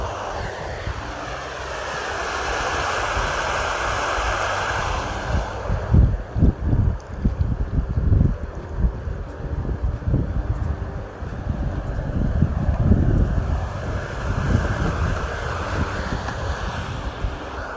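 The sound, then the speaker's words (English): Water rushes with a steady, broad hiss, then gives way to deep, surging rumbles like waves rolling in, with gusty wind buffeting the microphone throughout. No one speaks. “I'm just going with the flow at the moment. Much like this water, water.”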